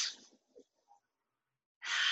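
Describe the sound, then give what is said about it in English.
Airy breathing during a guided exercise of 30 deep breaths, standing with feet firmly planted: a long breath fades out at the start, a quiet pause follows, then another full breath rushes in loudly at the end. No one speaks. “Full breath in, full breath out. Cycles and cycles of loving breaths.”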